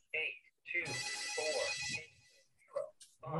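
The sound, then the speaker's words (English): A telephone rings with a bright, buzzy electronic trill lasting about a second, fairly loud, with voices talking before and after it. “Wow, you need to bury all them phones.”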